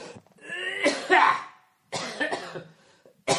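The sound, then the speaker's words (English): A person coughs in a few harsh, raspy bursts, a long hacking fit followed by a shorter one and the start of another, with brief pauses between. “You know, having a cough really affects your timing.”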